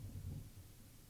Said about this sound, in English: And then there's thunder.